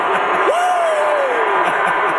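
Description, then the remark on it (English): A dense, steady roar from a large stadium crowd at a Niners game, booing and cheering Travis Kelce as he is interviewed, with one long voice rising sharply and then sliding slowly downward in a drawn-out boo or yell over the din. “Like, listen to this crowd at Travis Kelce.”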